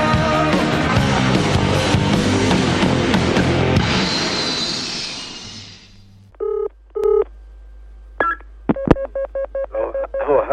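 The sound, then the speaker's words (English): Busy music fades out, then a telephone number is dialed for a call from radio station 4ZZZ to Mr. Bjelke-Petersen, a run of clear touch-tone beeps, short dual-tone pulses in quick, slightly uneven succession, with no one speaking. “I was just ringing to see what you thought about what's happened at 4ZZZ over this past week.”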